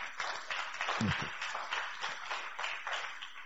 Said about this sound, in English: Jesus is here. Clap for the Lord Jesus.